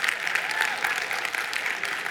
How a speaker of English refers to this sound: Now that's an embarrassing clap. You either got to commit to it or you not.